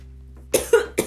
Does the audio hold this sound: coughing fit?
yes